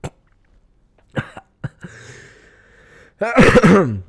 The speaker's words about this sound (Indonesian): Maaf batuk.